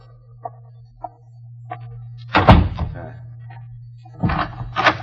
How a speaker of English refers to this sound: I will close the door.